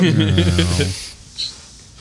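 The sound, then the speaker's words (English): A voice imitates a sad cat with a drawn-out, low, whining mew lasting about a second, followed by a short breathy hiss. The voice is fairly loud. “Sound like a sad cat”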